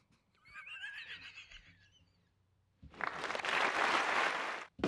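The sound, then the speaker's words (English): A high, wavering horse whinny gives way after a short pause to a loud, dense burst of applause from a sound effect button, pressed by mistake instead of a rim shot, that lasts about two seconds and then cuts off abruptly. “That was supposed to be a rim shot. I hit the applause, which all kind of worked in a way.”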